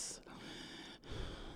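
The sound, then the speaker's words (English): A man breathes heavily, with a loud breathy gasp near the start and another deep, rasping breath at the end, alone with no talking. “Only disrespected by his heavy breathing.”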